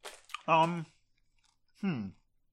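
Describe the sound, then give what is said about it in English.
Crunchy chewing with a few quick bites at the start, followed by two short voiced hums or murmurs, as someone reacts while eating a dark coffee-flavored candy. “I'll try two more.”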